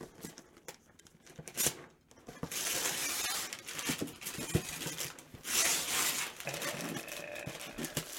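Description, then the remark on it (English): Gift wrapping paper being torn off an Amazon box in long, crinkly ripping bursts, fairly loud, with a brief pause before a steady stretch of tearing and rustling. “I do appreciate the Ninja Turtles wrapping paper”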